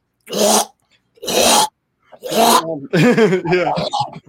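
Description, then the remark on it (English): A human voice imitates a cat throwing up: three harsh, breathy hacking heaves separated by short pauses, then a longer wavering, gurgling gag that rises and falls in pitch. “And this is an article I read a long time ago, but I watched a thing with him, and he was watching his cat throw up.”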